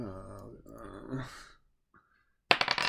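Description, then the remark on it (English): A drawn-out vocal sigh or groan, a brief pause, then a sharp burst of rapid clattering as a six-sided die (d6) is rolled for a grenade in a tabletop game, tumbling and rattling across a hard table surface, fairly loud. “Give me a d6.”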